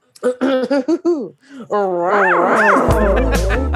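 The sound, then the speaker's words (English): A person imitates a cougar roar, starting with a quick series of yowling bursts, then a long, loud, growling roar that swoops up and down in pitch. “What we, a cougar roar, please.”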